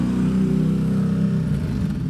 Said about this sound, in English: What car is this? Hold on. Oh, it's a bike.